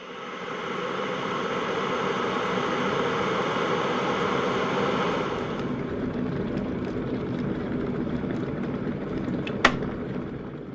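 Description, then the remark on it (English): An electric kettle roars steadily as water comes to the boil for noodles, a dense rushing hiss that thins out halfway through, followed by a single sharp click near the end. “Boil the kettle and get the fucking hot water onto this fucking noodle right away.”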